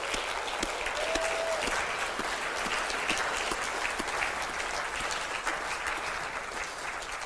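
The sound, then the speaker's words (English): A church audience claps steadily and densely for several seconds, giving a shout out, clap and cheer for the members meeting at home, with scattered cheers and a brief whistle rising above the sustained applause. “I wonder if this congregation here would just give a shout out, a clap and a cheer for the congregation who are meeting at home as well.”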